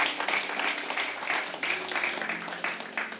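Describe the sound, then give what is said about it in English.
A church audience claps their hands for God in sustained, dense applause, a steady crackling wash of many overlapping claps with slight surges in loudness, with a few faint voices mixed in. “Come on, can we give God a hand clap and a shout?”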